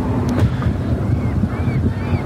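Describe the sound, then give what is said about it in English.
A steady, low roar of an airplane flying overhead above a park, continuous and fairly loud throughout, with a windy, rushing texture and no clear speech. “There's a plane overhead.”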